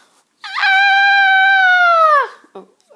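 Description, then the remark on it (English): One loud, high-pitched excited scream held steadily for about two seconds before its pitch drops away at the end, sounding almost like a howl, with no other sounds around it. “That was meant to be a scream. It was meant to be my excited self.”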